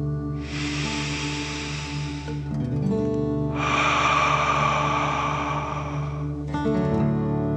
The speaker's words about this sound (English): Feel your legs, back, and belly soften. Again, deep breath in and out.